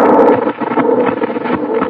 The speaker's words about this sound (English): I guess I better get in the house before it rains. Sure is windy.